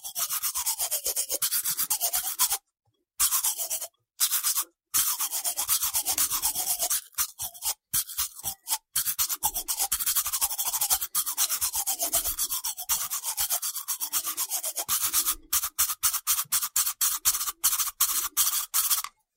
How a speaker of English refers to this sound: And especially the toothbrush, I thought is great, because I've been practicing it for so many years, and then I thought I'm going to use it because, you know, yeah. I played more toothbrush than drums in my life.